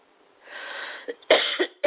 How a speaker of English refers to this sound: I do apologize for the cough.